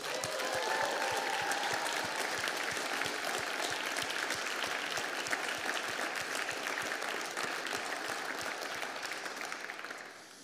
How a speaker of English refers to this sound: Should we celebrate just once more as we begin? Let's cheer.